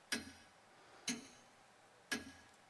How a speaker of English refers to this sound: But the clock is ticking.